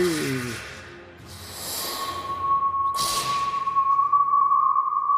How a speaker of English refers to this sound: You hear a distant whistle and feel a sudden whip of wind, even from within the shelter of the volcano.